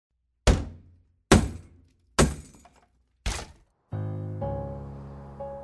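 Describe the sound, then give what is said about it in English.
Four heavy, booming impacts strike at a steady pace, each with a sharp crack that decays quickly, followed by a splintering crash and a sustained, rumbling resonance as Ambrose breaks through the door to the roof. “Ambrose broke through the door and went into the light”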